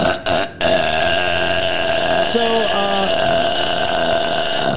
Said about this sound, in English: so here's some new burps